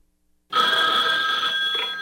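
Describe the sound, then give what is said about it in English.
After a brief silence, a telephone starts ringing, a loud, steady electronic trill that carries on unbroken to the end, with no voices; a girl of about 7 or 8 is set up to answer it and take a message. “in this clip, there's a little girl that they've actually have her set up to answer the phone and take a message.”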